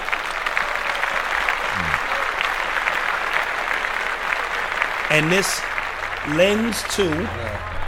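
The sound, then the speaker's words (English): Steady, dense audience applause fills the whole stretch at a loud, even level, while a man's voice begins speaking over the clapping near the end. “Clap that up.”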